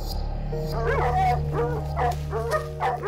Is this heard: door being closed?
no